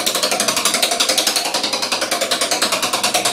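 A prize wheel spins with a rapid, steady ticking, its sharp bright clicks coming about eight per second at an even pace, loud and without any voices.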